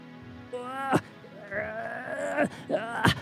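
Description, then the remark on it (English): A heavy tower door scrapes and creaks open in several drawn-out, wavering groans, each ending in a sharp crack, fairly loud with no one speaking. “It echoes out for a minute, and you hear the scratch of a heavy door starting to part.”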